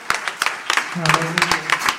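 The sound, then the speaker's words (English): A church audience clapping their hands: sharp, uneven bursts of claps repeat about every quarter to half second, with a brief sustained low voice-like tone joining in midway. “Can you clap your hands one more time just for this awesome, awesome church?”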